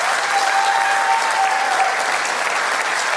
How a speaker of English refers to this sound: Let's give another round of applause for that.